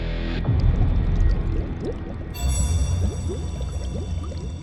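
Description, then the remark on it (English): Thick liquid bubbling steadily in a pot, dense little pops and gurgles overlapping over a low rumble, fairly loud, with no voices. “Diwata poked carefully at a bubbling pot”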